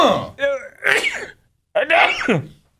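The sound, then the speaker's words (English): A loud, close sneeze bursts out with a sharp inhale and explosive release, followed after a short pause by a second forceful sneeze, both recorded right up against the microphone. “It's a pretty good sneeze.”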